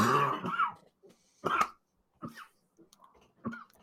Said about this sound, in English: Here, we'll take him off screen for a few seconds while he composes himself, dealing with a nasty cough from the sickness that took him out of last week's show.